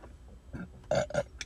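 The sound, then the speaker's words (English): A low burp rumbles out in a couple of throaty pulses, fairly loud against a quiet background, with no talking during it. “Sorry, I feel like I'm a burp.”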